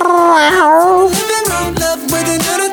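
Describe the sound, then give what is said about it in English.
Loud, wavering cat meows sliding up and down in pitch, sounding over a busy musical backing with stepping bass notes, lasting the whole few seconds without any talking. “There's a little cat sound effect.”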